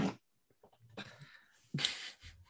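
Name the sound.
fart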